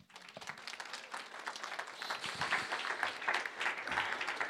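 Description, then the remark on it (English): A crowd breaks into sustained applause to cheer on a man being welcomed up to preach, dense clapping that swells slightly louder toward the end, with scattered cheers and whoops rising above it. “So he's got a great word that I really want you to cheer him on with.”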